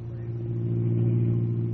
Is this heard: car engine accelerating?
yes